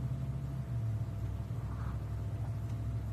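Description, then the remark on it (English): A neighbor's car engine idles steadily at 1 o'clock in the morning, a continuous low, droning rumble that holds level throughout, moderately loud, with no voices. “I have my neighbor's on. Jesus Christ, 1 o'clock in the morning.”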